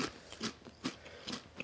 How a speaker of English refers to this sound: put one in his mouth. He's chewing.